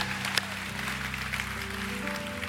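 An audience applauds for the family of God and in honor of military service members and first responders, a steady, dense patter of clapping that holds at an even level throughout, with sustained low keyboard or organ tones droning underneath.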